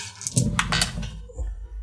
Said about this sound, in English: Go ahead and roll it. I don't have anything in melee, so it's just the dice.